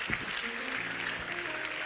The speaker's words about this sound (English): Come on, let's stand all across this building. I want you to clap your hands to the Lord right now. Give the Lord a great hand praise.